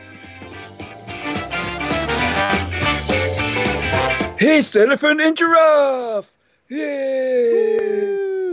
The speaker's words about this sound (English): There is the amazing theme tune that I spent £250 on getting commissioned this week.